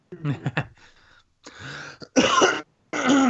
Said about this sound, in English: Oh God! Excuse me, I had to clear my throat.